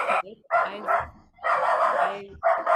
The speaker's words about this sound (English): It's okay. It's a puppy. We understand.